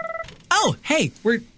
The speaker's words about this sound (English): We're 30 seconds in. No, 3 minutes in, and I got a phone call, and they hung up. Your new ringer is awful. I love it. It gets your attention, doesn't it? It literally like drills through my ear directly into my skull. It's terrible.